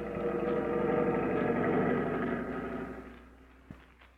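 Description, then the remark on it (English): A small Forest Service patrol plane drops down toward a meadow. Its propeller engine drones steadily with a rich, buzzing hum, holding loud for a couple of seconds before fading away, followed by a single brief knock. “That's the patrol plane I've heard about.”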